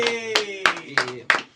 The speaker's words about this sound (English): Yeah, I'll give it some applauso. Como se dice applause? Applauso.